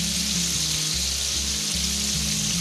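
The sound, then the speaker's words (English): Chicken frying in a pan in a kitchen, a steady sizzle with dense crackling and popping that holds unbroken throughout, over a faint low hum and no voices. “Have you ever been in your kitchen and frying something and it was quiet and it was peaceful? Hear that sound?”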